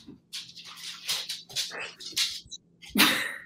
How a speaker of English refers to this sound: You hear that in the background to the pure musical stylings of Bruce the Dog.